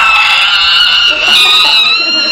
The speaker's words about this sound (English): we hear a giant screeching noise come from above the bunk.